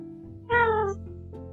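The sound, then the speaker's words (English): A single clear meow from Alexander, a big black 4-year-old foster cat with yellow eyes, in Melbourne, loud, with a slightly falling pitch, lasting about half a second over a quiet low background hum. “And that's Alexander. He's 4 years old, and he's my first foster cat.”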